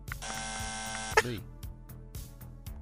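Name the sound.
quiz buzzer being pressed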